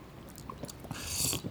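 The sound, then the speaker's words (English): Quiet wet mouth sounds of someone sipping and swallowing water from a glass, with a soft breathy rush toward the end as they take another gulp. “1 more swallow.”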